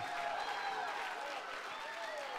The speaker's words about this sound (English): Come on, if you're going to clap, do a decent clap.